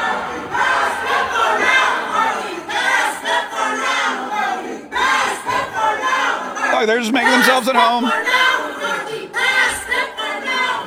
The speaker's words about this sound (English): Kevin McCarthy, the Speaker of the House of Representatives, had his office ambushed yesterday by a bunch of left-wing lunatic activists who burst in, took over his office, sat down, and started chanting in the middle of the day. Listen to this.